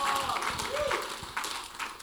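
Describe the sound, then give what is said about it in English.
An audience claps their hands together in a steady, dense patter of many overlapping claps, fairly loud and continuous, with a faint voice or sustained tone underneath. “So I'm pleased that you clapped your hands.”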